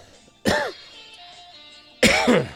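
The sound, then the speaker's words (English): Two loud coughs about a second and a half apart, each a harsh burst with a raspy, throaty edge, separated by quiet background noise and no talking. “A cough.”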